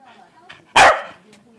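A single sharp, loud dog bark rings out, cutting briefly through a quiet, murmuring background before fading away.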